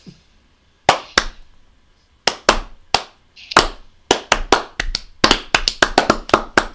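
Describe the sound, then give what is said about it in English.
A slow, hesitant clap starts with a few sparse, uneven hand claps, then picks up into quicker, irregular clapping that stays thin and never becomes full applause. No one talks over it. “That was an awkward slow clap, but I'll take it.”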